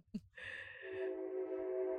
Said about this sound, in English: Here comes the train, Tori. You want to stop while it goes by?